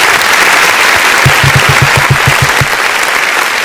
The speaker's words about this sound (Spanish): Emocionante, ha sido, podemos cortar ya los aplausos y centrarnos en el tema.